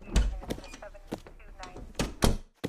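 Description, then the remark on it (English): A door opens and later shuts as a visitor is sent in to see the sheriff, with a solid thunk at the start, light clicks and shuffling in between, and a heavier thud near the end. “Send him in. Right through that door”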